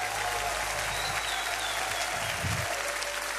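An audience applauds steadily, a dense, even wash of many hands clapping that holds at a constant loudness throughout, with no voices standing out.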